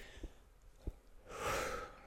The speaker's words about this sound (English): So how do we deal with it? First and foremost, purposeful breathing, right?